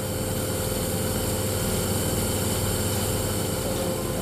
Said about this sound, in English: So that's the nebulizer being turned on? Yeah.